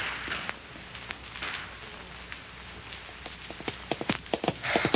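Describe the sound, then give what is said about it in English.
Galloping hoofbeats of a ridden mare thud in quick, uneven clusters over a steady hiss, growing louder toward the end; no one speaks. “Half a mile lead. Come on, that's a good horse.”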